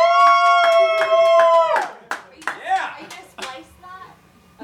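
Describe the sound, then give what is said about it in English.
A small group of neighbors in adjacent row houses cheers with a sustained, high-pitched shout while hands clap in quick, uneven bursts; the cheering then breaks into scattered whoops and voices as the clapping trails off. “Can everyone cheer?”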